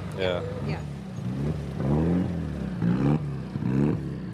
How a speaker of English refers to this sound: Over on the other side of the service area, another car has come back in off the stages.